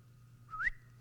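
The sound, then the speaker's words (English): A person whistles one short call, a clear tone sliding upward in pitch and ending abruptly, heard alone over a faint low background hum. “You got to learn his whistle.”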